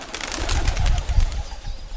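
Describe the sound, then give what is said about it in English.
Low, throaty cooing from homing pigeons rumbles in soft, uneven bursts, with faint rustling and fluttering mixed in. There's no talking. “Recent research on flocks of homing pigeons has shed some light on this very question.”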